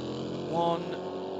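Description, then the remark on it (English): A race car engine, the number 10 car driven by Ryan Briscoe, drones steadily, briefly swelling into a louder, tonal whine mid-clip as it powers through turn one, then settling back into a continuous mechanical roar. “Through turn one for the number 10, Ryan Briscoe aboard that car.”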